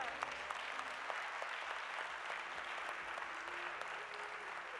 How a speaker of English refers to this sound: Come on, let's give God one more hand clap of praise.